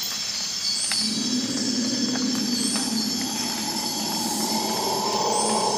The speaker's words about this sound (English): I set up the gear and start recording at 5:33 a.m. And less than 2 minutes later, my quarry, the dominant male howler monkey, starts into howling.